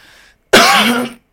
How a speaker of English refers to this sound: Take your time to give it a good cough, like a real